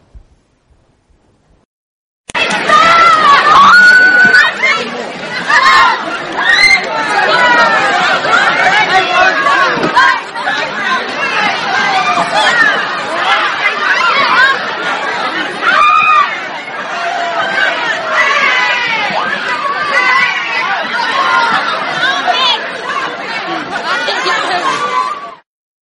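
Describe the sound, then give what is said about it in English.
A loud, dense crowd of shoppers at a Walmart cell phone sale on Thanksgiving fills the air with overlapping chatter, shouts and excited voices, a continuous roaring hubbub that begins abruptly and stays steady with occasional laughs and yells. “Is Walmart for a cell phone sale that they had last Thanksgiving.”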